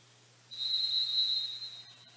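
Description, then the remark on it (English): A single sustained referee's whistle blast at a basketball game, blown after a steal, shrill and steady for over a second, sounding over a low hum of arena background noise. “Just threw it away, though, as Ducker stole the ball and a whistle.”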